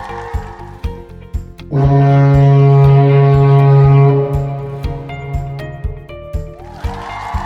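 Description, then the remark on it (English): A man's voice imitates a foghorn at a foghorn impression competition, with one long, loud, low droning blast lasting a couple of seconds, steady in pitch. Quieter rhythmic background sounds come before and after it. “A perfect foghorn impression.”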